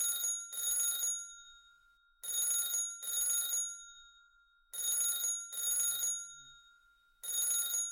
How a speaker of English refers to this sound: The phone rings in the background.